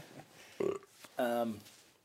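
A person burps twice: a short croak, then a longer, louder, guttural belch that drags for about half a second before fading into quiet.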